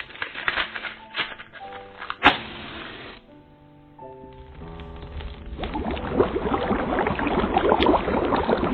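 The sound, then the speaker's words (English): A cauldron bubbles and boils, its dense, crackling churn swelling louder toward the end, with a sharp knock early on and a few steady humming tones held underneath. “Right, let's get this cauldron boiling.”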